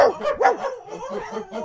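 small dog barking

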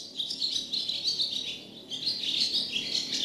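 bird singing

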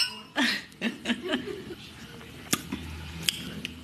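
glasses clinking

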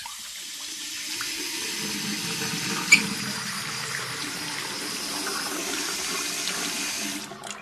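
water running

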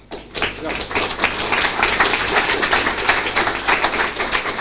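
hand clapping

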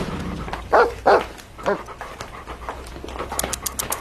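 dog barking

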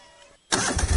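lawn mower engine starting

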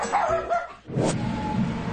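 shetland sheepdog barking

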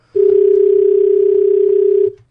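telephone dial tone

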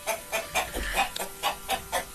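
chickens clucking

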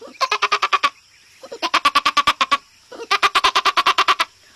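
goat bleating

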